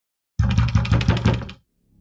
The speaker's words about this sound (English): And you hear a pounding at the door.